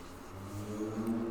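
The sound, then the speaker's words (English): A truck engine rumbles deeply as it drives past outside, a steady low drone that swells slightly and holds for a moment, with no voices. “I'ma need these punk ass gangbangers to put the fuck, see, that's probably a gangbanger truck right there, to put the guns down when there's fucking kids around.”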